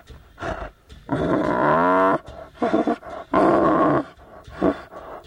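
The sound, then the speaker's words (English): A 2-year-old male tiger at a Buddhist temple in Thailand growls and roars in several loud bursts, the longest a drawn-out rumbling roar, broken by brief pauses and shorter snarls. No one speaks. “For this reason, this temple has become a refuge for tiger cubs rescued from poachers working along the Thai-Burmese border.”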